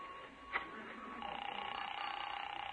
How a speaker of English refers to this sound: Yeah, I have to make a phone call.